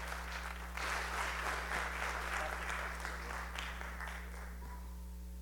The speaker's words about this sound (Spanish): Ayúdame a recibirlo con un aplauso